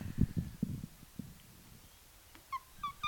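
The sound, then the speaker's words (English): Soft thumping and shuffling noises, then a few short, high-pitched whimpers near the end from a dog wearing a cone, quiet, with no one talking. “and now the dog has a cone on it.”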